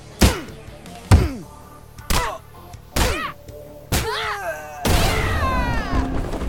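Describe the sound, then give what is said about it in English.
Five heavy video game punches land about once a second, each trailed by a falling electronic whine, then a loud buzzing charge-up swells with rising tones as the character Dahlia's meter fills, building toward her invincibility. “The act of building up the meter would sound like the following.”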